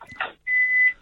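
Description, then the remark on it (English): A microwave oven cooking a late-night dinner beeps: a brief tone, a short burst of rustling noise, then one longer, steady, high-pitched electronic beep lasting about half a second. No one speaks. “No, I'm... that was the microwave.”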